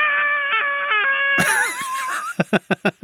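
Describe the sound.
A voice imitates a girl screaming as she runs away: a long, high-pitched scream, wavering and stepping in pitch for about two seconds, then ending in five quick, evenly spaced bursts like someone running.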